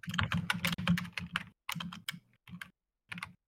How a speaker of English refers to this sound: I have no idea. Too busy typing to think hard.